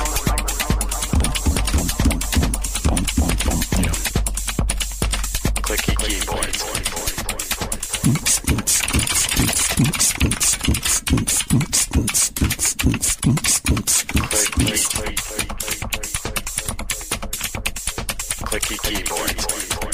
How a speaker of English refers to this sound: Yeah, but listen, keyboard nerds who have an overlap with music skills, if you can make a rave song composed entirely out of clicky keyboard sounds and send it, that would make me very happy.